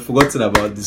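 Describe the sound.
A few sharp hand claps ring out in quick succession, mixed with voices talking over them; people clap for a speaker who just raised a noteworthy point about debut producer projects.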